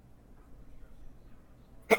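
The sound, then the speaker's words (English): A single sudden, loud sneeze bursts out near the end, after a stretch of quiet room hum with no talking. “Excuse me. Bless you.”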